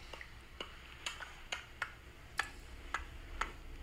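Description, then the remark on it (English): A young girl makes a steady series of about eight short, soft puffing pops with the lips, imitating Gandalf puffing on his pipe, evenly spaced, faint against a quiet background with no talking. “I've got a sound effect of him actually puffing.”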